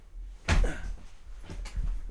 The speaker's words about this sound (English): Sorry, my headphone cables got wrapped around my chair.